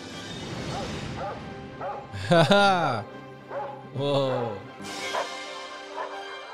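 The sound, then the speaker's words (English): Many dogs across a city bark and yelp in scattered bursts, some loud, others fainter, with a murmur of voices underneath. “Oh yeah, the whole city's, all the dogs in the city are barking.”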